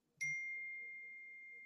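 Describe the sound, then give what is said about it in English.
A single bright electronic ding from a phone, a notification tone, strikes sharply and rings out with a long, steady sustained tone that slowly fades, heard alone against a quiet background. “someone's telling me that it's a text message for you or it's your alarm”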